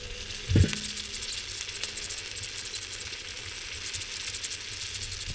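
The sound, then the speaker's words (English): Sausages sizzle steadily on a standard Weber kettle charcoal barbecue outdoors, a dense crackling hiss with fine pops throughout, preceded by a brief low thump near the start. No one speaks. “Let's see if we can get just a little sound of that sizzle.”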